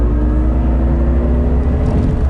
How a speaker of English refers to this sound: Wow. Yeah, just went over to railroad tracks like nobody's business.